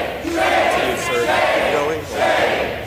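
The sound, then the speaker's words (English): Democrats in the US House of Representatives shout "shame" in unison after a resolution is adopted, three drawn-out, swelling chants in steady rhythm, loud and overlapping, with no single voice standing out. “And the Democrats shouted shame for a couple of minutes.”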